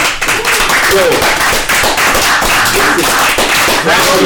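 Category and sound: crowd, round of applause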